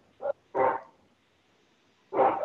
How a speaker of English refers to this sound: I'm sorry, my puppy is going crazy in the back.